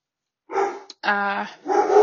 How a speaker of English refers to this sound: Sorry, my dog's barking.